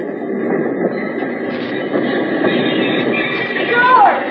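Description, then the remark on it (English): A work train arriving back in La Paz rumbles steadily, cars droning along the rails, until a brief, sharp wheel squeal near the end as it pulls into the station. “when, a couple of days later, you jump off the work train back in La Paz.”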